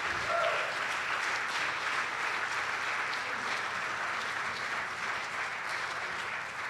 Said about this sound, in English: This is your interns this summer. You can keep clapping.